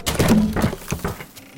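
A heavy wooden bolt on a trapdoor slides back with a series of dull thunks and scraping knocks, a few solid clunks spread over a second and a half, with no voices.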